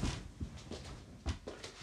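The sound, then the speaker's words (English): A door is pushed shut, with a soft low thud and a few light clicks and rattles around it. Quiet, with no one speaking. “Sorry, just shutting my door.”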